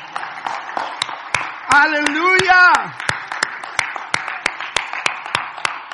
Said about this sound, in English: Now you can clap your hands.